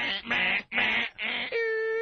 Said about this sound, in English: Terrain warning. Terrain warning. That's the shit you don't want to hear. Ever.